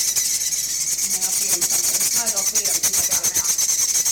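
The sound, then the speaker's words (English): Chimney swifts calling from inside an opened incubator box, hanging on its sides: a loud, continuous high-pitched raspy chatter with rapid, rhythmic pulses and faint squeaky notes woven through. No one speaks. “You can hear that, right? So these are chimney swifts.”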